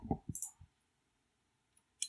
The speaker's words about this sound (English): Yeah, it's a fucking chair, man. You can hear that fucking chair, man.